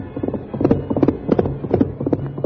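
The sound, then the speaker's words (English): The hooves of Silver, the Lone Ranger's great white horse, pound at a gallop over rough ground in rapid, rhythmic clusters of heavy thuds, steady, with no voices. “In spite of the rough ground where a misstep would have meant death for both horse and rider, Silver's hoofs beat out a savage tattoo.”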